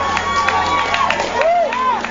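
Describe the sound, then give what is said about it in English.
A small crowd of about 30 people cheers and whoops in a dense, steady wash of voices, with a few rising and falling shouts standing out over the noise for about two seconds. “There's like 30 people cheering.”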